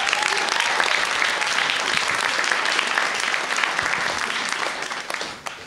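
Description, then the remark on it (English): A crowd applauds steadily for the next storyteller, a dense wash of many hands clapping at an even, loud level, holding for several seconds before tapering slightly at the end. “Well, let's give a massive round of applause to our next storyteller,”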